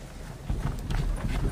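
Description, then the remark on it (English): Horse hooves clip-clop in a steady rhythm, a run of hollow, knocking beats that begins quietly and grows louder over a low rumbling background. “The dear horses are patient and good.”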